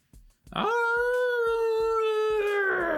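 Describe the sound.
A person imitates an arctic wolf howling in pain: one loud, sustained, mid-pitched cry that swoops up quickly, holds steady for about two and a half seconds, then sags slightly in pitch.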